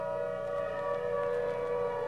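A fire siren mounted high atop a red brick engine house wails steadily in the distance, its sustained tone hanging over the scene at moderate volume with no voices present.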